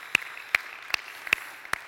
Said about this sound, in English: Yes, let's do it. Clap for those mamas.